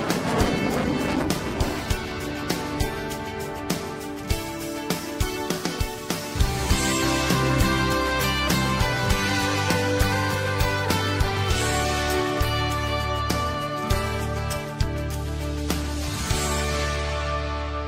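A Sea Dart jet-powered seaplane runs on the water: a loud, steady engine whine with layered tones that shift in pitch, plus rushing water and wind noise throughout.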